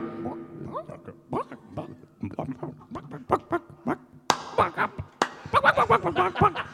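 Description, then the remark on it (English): A person imitates an angry chicken, letting out a rapid string of choppy, squawking clucks and bawks, growing louder and more frantic toward the end. “You're an angry chicken. You're angry.”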